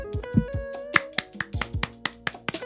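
A run of sharp hand claps at a loose, uneven rhythm, a dozen or so, over a steady sustained musical tone, with no one talking.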